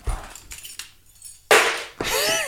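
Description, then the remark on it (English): Metallic keys jangle and clatter in a few short bursts, with one loud, bright rattle near the middle followed by a sustained jingling that carries a faint ringing tone. “Drop the keys.”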